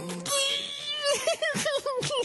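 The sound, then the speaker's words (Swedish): A voice mimics a man sitting down and crying, with exaggerated wailing and sobbing, wavering, rising-and-falling cries broken into short repeated bursts, loud for about two seconds. “Jag tror att han är en sån här person som sätter sig ner och gråter då.”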